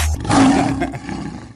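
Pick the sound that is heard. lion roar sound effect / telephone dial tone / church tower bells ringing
lion roar sound effect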